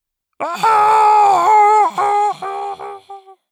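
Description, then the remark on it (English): A Horcrugeer creature's loud, strained cry as it falls after being shoved through a shattered window: a long wailing howl that wavers in pitch, then breaks into shorter, weakening bursts as it fades away. No talking. “I heard the Horcrugeer's cry, dying away as it fell.”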